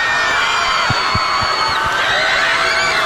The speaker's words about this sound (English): That woman is screaming in the background, like hard.